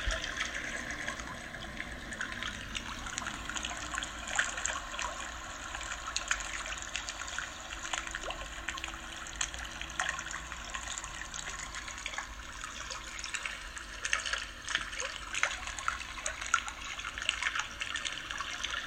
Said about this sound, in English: You have a nice cold drink, and you're sitting in a boat far from the shore. You hear the water lapping up against the sides of the boat.